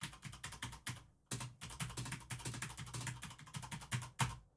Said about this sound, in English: Okay, so now I can just use the six keys on my computer keyboard to type text.